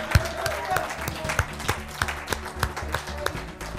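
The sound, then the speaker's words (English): An audience at a church service claps their hands in praise to the Lord at the end of the message, in a steady, roughly even rhythm, many sharp claps layered together over a low murmur, with no clear speech rising above it. “Come on, clap your hands to Him.”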